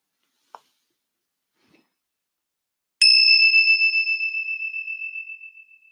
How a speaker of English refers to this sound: Separate the practices with the sound of the meditation bells.